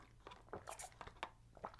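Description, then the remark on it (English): Quiet crunching of a menthol cough drop, with several sharp, irregular cracks as it is bitten and chewed, and no talking. “Anyway, sorry, I'm going to crunch this.”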